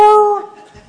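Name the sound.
dog yelping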